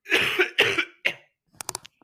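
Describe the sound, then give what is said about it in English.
A coughing fit picked up on a microphone as a person coughs away from it: three harsh, hacking coughs in quick succession, followed by a few quieter, shorter coughs and a faint final catch of breath. No one speaks. “That dude, you went away to cough and it still came up on the mic.”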